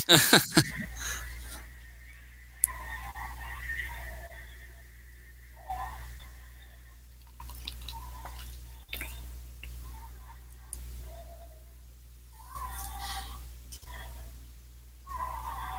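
A monster's raspy, croaking growl repeats in slow, breathy pulses like heavy snoring, each rumble rising and fading every second or two over a steady low hum, with no talking.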